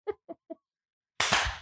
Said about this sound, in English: Did that work? Did we all clap at the same time?